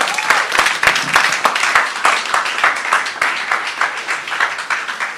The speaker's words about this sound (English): Just in agreement with everything that's been said, those songs, can we give the worship team a round of applause?